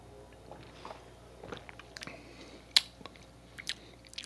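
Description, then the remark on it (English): Quiet sipping of Mountain Dew Live Wire, an orange-flavored soda, from a glass: soft wet mouth sounds and small clicks, with one sharp clink near the middle. Nobody speaks. “if you would like to grab your glass, take a sip and let me know what you think.”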